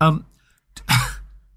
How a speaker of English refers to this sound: dry cough.